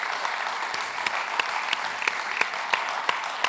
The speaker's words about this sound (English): So I'd like you to welcome …, and we're going to ask him some questions tonight. Come give him a big round of applause.